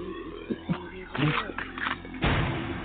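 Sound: gunshot sound effect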